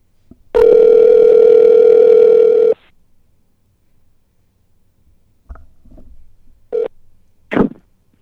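phone call ringback tone

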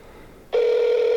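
outgoing telephone call ringing

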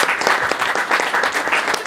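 audience applause

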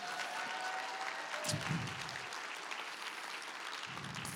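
audience cheering and clapping

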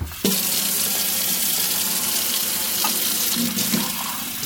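running tap water

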